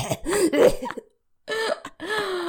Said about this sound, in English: Everyone's just coughing on the smoke and like